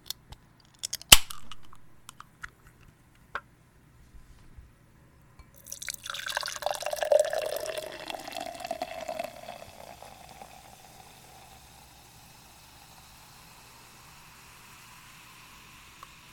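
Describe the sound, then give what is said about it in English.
A few sharp clicks and clinks as a can or bottle of gas-station beer is worked open, then a steady fizzy pour into a glass, rising in pitch as it fills before trailing off. “So let's pour it in a glass. If I can open it.”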